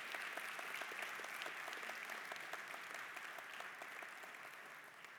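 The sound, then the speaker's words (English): A crowd claps steadily in sustained applause to encourage people about to be baptized, a dense wash of overlapping hand claps that holds even and fairly loud throughout, easing slightly toward the end, with no voices audible. “Let's give them a round of applause to encourage them.”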